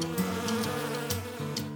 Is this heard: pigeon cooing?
no